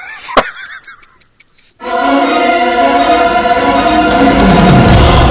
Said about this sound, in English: What is that ticking? Refresh my memory on the ticking that I hear in the background right now. Well, I know it's been a while, but yes, we still have in operation the mighty Doom Clock. Whoa! Yeah, we left the batteries in it.